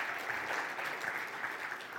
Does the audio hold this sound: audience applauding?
yes